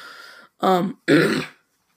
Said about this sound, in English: No, I don't have Tourette's. I'm just clearing my throat a lot. Just like in the last episode, I had to clear my throat like twice or three times.